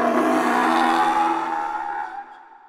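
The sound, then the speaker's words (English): A loud, harsh monster roar, like a pterodactyl's scream combined with a lion's growl: a shrill, screeching cry layered over a rough, growling rumble, held steady for about two seconds before it tapers off. “It was a sound like the scream of a pterodactyl combined with the growl of a lion and amplified 100 times.”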